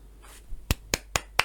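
Four sharp, bright claps at a steady, unhurried pace, like one person giving a brief round of applause, with no talking.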